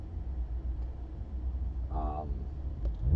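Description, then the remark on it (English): Cars rumble outside with a steady, low, droning engine noise that sounds muffled. A short tonal burst rises briefly above it about two-thirds of the way through. “It's like a car meet out there.”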